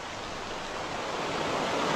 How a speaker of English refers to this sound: So we move to an opening reflection, which involves not just our words, but the voice of the sea. Let the sea come and wash your feet.